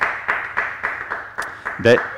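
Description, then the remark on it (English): Light, scattered clapping from a small group at the start of a Sunday School lesson on Colossians, a steady run of quick claps at moderate volume, with a short vocal sound breaking in near the end. “No raucous applause or wave, or there we go.”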